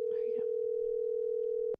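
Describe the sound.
A steady, unbroken telephone dial tone hums at a single mid pitch for nearly two seconds, then cuts off abruptly with a click as a call is placed; faint voices murmur underneath.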